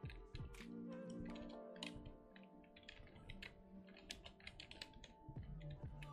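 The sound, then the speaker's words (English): Rapid, irregular clatter of keys on a computer keyboard being typed on in the dark, fairly loud, with bursts of clicks running continuously over a low background hum and no voices. “It's hard typing in a dark.”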